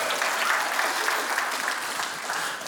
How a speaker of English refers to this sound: Someone reminded me today that Christmas Eve is 2 weeks from today. So we can clap for that.